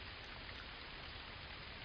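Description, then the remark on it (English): Steady rain falls without pause in the woods, a dense, even patter and hiss that stays constant throughout, fairly soft and with no voices. “I waited for the rain to start.”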